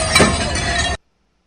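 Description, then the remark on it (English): A loud crash of breaking glass as Antifa protesters smash a window in Colorado, with shards scattering in a dense, noisy burst for about a second before cutting off abruptly. “Here they are smashing windows.”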